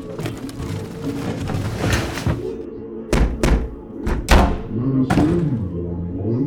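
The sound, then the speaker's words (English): A heavy bed is shoved against a door, producing several dull thumps and knocks in an uneven sequence, with muffled voices and low rumbling underneath. “Here, help me move to bed.”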